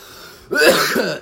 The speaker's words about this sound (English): I always cough because it's like, I've got to like talk and use my chest voice, my real voice, my podcaster voice.